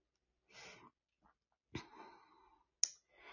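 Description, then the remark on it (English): Tarot cards being shuffled for a reading: a short papery riffle, then a sharp slap followed by a longer fluttering riffle, a crisp snap, and another brief shuffle, with no talking. “So let me go ahead and shuffle here.”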